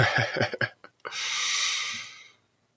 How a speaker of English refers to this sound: Well, and I'm sorry if there's a lot of sniffing. I'm still sick, so that might be something you hear.